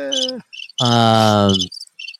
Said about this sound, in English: you play that cricket sound on me one more time.